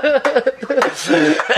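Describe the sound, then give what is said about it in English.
A voice beatboxes a quick run of percussive mouth sounds, sharp clicks and bursts mixed with buzzing hummed tones, imitating a drum beat in a loud, rapid rhythm. “Now do that beatboxing thing you did again.”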